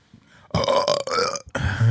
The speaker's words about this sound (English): Bless you. Oh, yeah. Burp break.